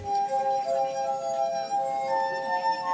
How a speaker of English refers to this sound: This is also why running your finger around the rim of a glass at just the right speed will produce sound.